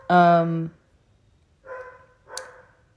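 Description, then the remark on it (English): A dog barks three times after someone rings the doorbell: one loud, drawn-out bark, followed after a pause by two shorter, softer barks, with quiet background between them. “It's because the dog is barking because someone just rang the doorbell.”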